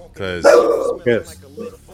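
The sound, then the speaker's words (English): A dog barks, two or three loud, sharp barks in quick succession, followed by a softer yip. “I don't think my dog agrees with you.”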